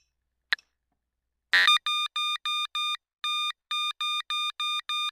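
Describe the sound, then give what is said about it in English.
An SWR meter's growling tone output as RF is sent into a 50 ohm dummy load: a click and a brief crackle, then about ten short, buzzy, evenly paced tone pulses at a steady mid pitch, with no talking. “So you'll hear a low growl, and then let me hear what we say.”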